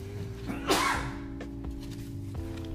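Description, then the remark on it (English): A pet lets out one sudden, forceful sneeze, a short hissy burst that rises sharply and fades within a moment, set against a steady low background hum with no talking. “He sneezes like somebody's attacking him.”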